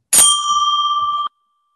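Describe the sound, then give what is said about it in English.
A single loud, bright bell strike rings out, its metallic tone sustaining with a slight warble for about a second before cutting off abruptly. No voices are heard. “Wow, that bell was kind of silent.”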